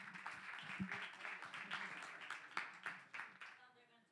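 An audience claps steadily for about four seconds for the Elevate Skit Team, a dense patter of many hands with crowd murmur underneath. The applause stays fairly even, then thins and fades toward the end.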